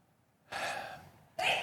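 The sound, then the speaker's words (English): A sneeze: a long, breathy intake of air followed by a sudden, sharp, hissy burst at the end. No one speaks. “Bless you.”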